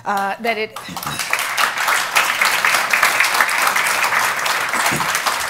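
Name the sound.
applause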